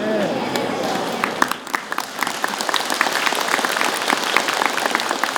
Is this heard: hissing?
no